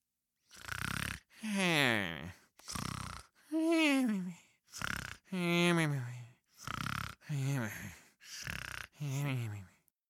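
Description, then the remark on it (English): A voice mimics the exaggerated, loud snoring of a hare asleep at the side of a racetrack, with about ten rhythmic bursts alternating raspy inhales and drawn-out, wavering exhales, each separated by a brief pause. “The snores coming from the side of the racetrack confirmed that.”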